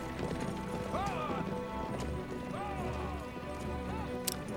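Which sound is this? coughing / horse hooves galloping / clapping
horse hooves galloping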